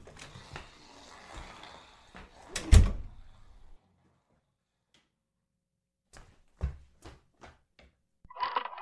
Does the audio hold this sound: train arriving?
no